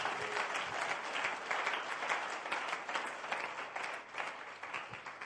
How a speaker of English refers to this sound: If you are here, clap your hands unto the Lord.